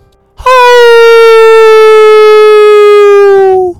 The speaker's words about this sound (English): A wolf howled outside, the biggest wolf noise that any of them had ever heard.